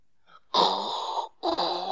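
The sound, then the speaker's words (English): Someone imitates Darth Vader's heavy, rasping respirator breathing: two long, loud, hoarse breaths, the first lasting nearly a second, then a brief pause before the second begins. No speech. “That's my really rubbish Darth Vader impression.”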